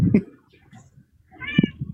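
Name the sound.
cat meowing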